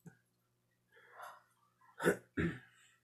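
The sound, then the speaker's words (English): A sharp, sudden gasp: two abrupt, loud breathy bursts in quick succession, preceded by a softer, airy intake of breath. No speech. “I've never gasped like that before.”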